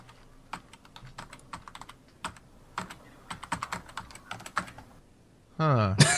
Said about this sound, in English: This is from Maz's keyboard. Odd.